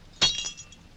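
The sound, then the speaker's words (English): A single sharp, loud crash of a drinking glass shattering, followed by a brief tinkle of scattering fragments that quickly fades to quiet. “Does it break because it is faulty or because it is glass?”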